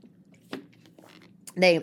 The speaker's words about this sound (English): Hold on, let me take a sip.